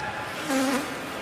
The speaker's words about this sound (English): we'll probably have a better opportunity to hear this fart on the broadcast